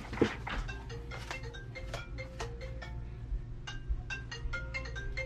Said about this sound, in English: Hold on. My son's phone's ringing. Hold on.